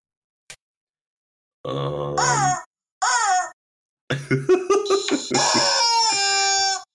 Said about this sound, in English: That's a YouTube video called "Biggest and Loudest Rubber Chicken." Nice. And you know what? It's pretty big. You can't call that the biggest rubber chicken. There's no way.